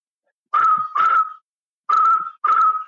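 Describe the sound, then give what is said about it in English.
A person whistles an imitation of a bokmakierie bird call: two pairs of steady, mid-pitched whistled notes, each pair quick and matched, with a short silence between the pairs. “Another thing that'll give this bird away is it's almost like there's somebody's cell phone going off in the bush field. It's almost like, I'm going to try and imitate again, but it's something similar to this.”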